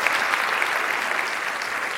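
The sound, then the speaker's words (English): Steady, dense applause from an evening audience in the House, giving a round of applause in recognition of the founders, many hands clapping at once in a continuous crackling wash with no pauses, fairly loud throughout and with no voices heard. “I would love to give them a round of applause and recognition for this.”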